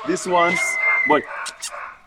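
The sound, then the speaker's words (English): Two little dogs yap and whine in a quick flurry of high-pitched barks, with a thin sustained whimper running underneath the short bursts. “More two dogs in here. They are little dogs over there in the other place.”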